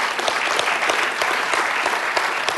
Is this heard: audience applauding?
yes